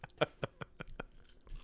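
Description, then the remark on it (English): Crunchy chewing, five sharp crisp bites in a steady rhythm about a fifth of a second apart, then a softer rustle as the munching trails off. “Crunch, crunch.”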